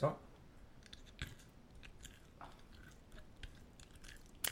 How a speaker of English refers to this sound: Let me chew. Hold on.